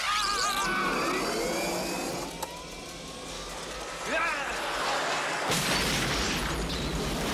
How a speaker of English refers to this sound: We needed that explosion so that later they can say, oh, there was an explosion in the old cement factory. And they showed the heat.